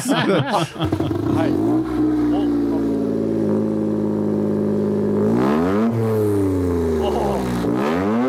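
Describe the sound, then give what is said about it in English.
A car engine in a film scene hums steadily, then revs up twice with rising and falling pitch toward the end, loud and continuous throughout. “They're smelling the exhaust.”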